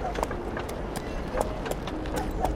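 The marshal's horse's hooves clip-clop along a hard street just past the barber, in a steady, unhurried rhythm, each strike sharp, over a low rumbling background.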